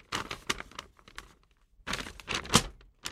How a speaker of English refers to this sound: Oh my god, there's a printout, guys. I got some actual Rock Band stuff there. Pulling some paper out of my pocket.